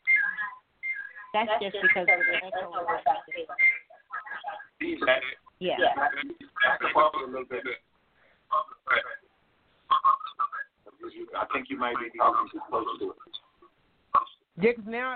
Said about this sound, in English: That's just because the echo. Yeah. I think you might be talking too close to it.